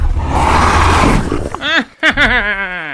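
dragon roaring

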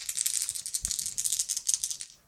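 dice being rolled

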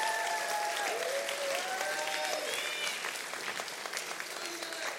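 audience applause

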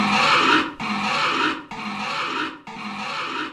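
pig squealing

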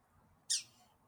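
pet bird squawking

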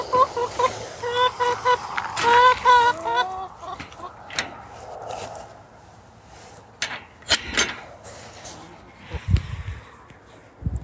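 hens clucking

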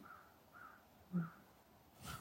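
crows cawing

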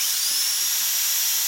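dental drill whirring

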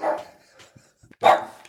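guard dog barking

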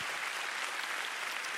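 audience applause

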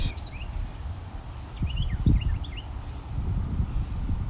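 birds tweeting outdoors

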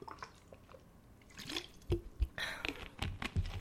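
sipping bottled water

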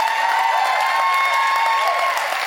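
audience applauding and cheering

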